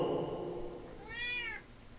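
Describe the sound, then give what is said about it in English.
A single drawn-out meow from a cat named Mr. Pants, rising and falling in pitch, heard clearly with no talking, after a brief lower murmur at the start. “Cat. It's a cat.”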